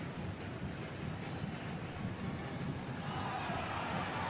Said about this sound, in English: Savarino, the crowd booing